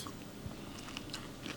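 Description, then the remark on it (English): Crisp crunching from someone biting into a crunchy bone marrow taco, with a few sharp cracks and chewing over a steady low background; nobody speaks. “It looks like carnitas. But it's not. It's bone marrow. It's crunchy.”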